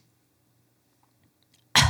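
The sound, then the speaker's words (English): Near silence with a faint low hum, then a single sharp, loud, deliberately made cough bursts out right at the end and is cut off abruptly. “I'm just going to do a cough.”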